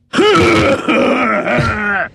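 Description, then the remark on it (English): A voice loudly imitates an old man's hacking cough as a dramatization: a raspy, groaning rasp lasting about two seconds, broken into a few strained pushes, with no talking. “Anyway, I feel a lot older, and now I have one of those grandpa coughs.”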